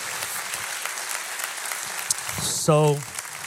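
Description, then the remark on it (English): An audience at a church in Boise claps steadily for the pastoral team, a dense, continuous patter of many hands at a fairly even loudness, with a voice briefly rising over the applause near the end. “But can you give all of them a big hand clap”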